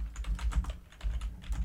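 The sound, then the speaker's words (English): Rapid typing on a computer keyboard, a quick run of light clicky keystrokes with a low thump beneath them, fairly quiet, with a brief pause partway through and no voices. “this is picking up so much. My typing, my thumping.”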